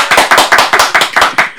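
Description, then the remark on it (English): A steady run of about eight or nine sharp hand claps, loud and evenly spaced at a brisk tempo, with no voices over them. “I'm clapping for you guys.”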